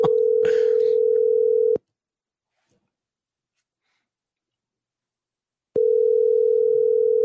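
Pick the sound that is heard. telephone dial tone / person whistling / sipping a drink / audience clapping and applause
telephone dial tone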